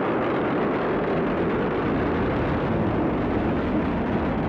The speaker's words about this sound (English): Go Falcon and happy Thanksgiving ISS. That's right. Liftoff of SpaceX's Falcon 9 rocket for the 26th cargo resupply mission, bringing new science experiments and solar arrays to the International Space Station.